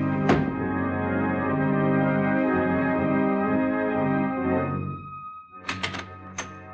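A door is opened: a sharp click, then a long, steady droning tone, followed by a quick cluster of rattling latch clacks and a final thunk. No one speaks.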